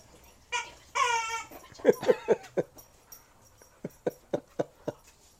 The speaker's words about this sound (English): Sorry, we had a dog getting a chicken. Not a real one. We good? We don't need PETA showing up.